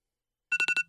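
A phone alarm ringtone, the alarm someone wakes up to every morning, starts after a moment of silence: five quick, bright electronic pulses in a steady rhythm, fairly loud, with a sustained high tone running underneath. No voices.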